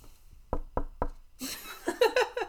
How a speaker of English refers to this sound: All three smiled at each other and suddenly heard a knock at the door.